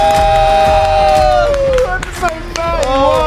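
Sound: crowd cheering wildly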